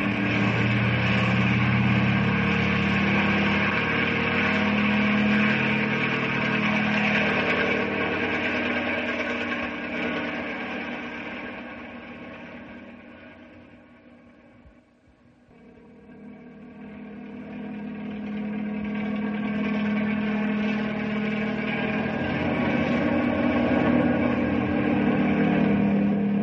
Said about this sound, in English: Bring the copter closer